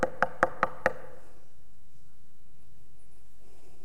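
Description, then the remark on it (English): Five quick, evenly spaced, crisp knocks on the door of someone's home in the first second, followed by quiet room tone with no reply. “Not overpowering, just knocking.”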